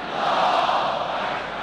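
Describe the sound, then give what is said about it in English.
A large crowd roars and cheers in a dense, continuous wall of many voices, loud and steady throughout the short stretch, with the blended sound of mass chanting of slogans such as "death to America" and "death to Israel" during the supreme leader's address, rather than any single clear voice. “This as the crowd cheered, death to America, death to Britain, death to hypocrites and infidels, death to Israel.”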